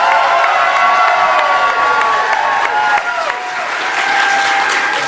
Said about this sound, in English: We want you to make some noise for your favorite character in that round, and we're going to capture that with this applause meter. So everyone give me a round of applause for Celebration Orlando.